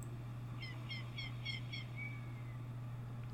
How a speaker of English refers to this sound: It has that crow cawing, iconic Ocarina of Time. Crow.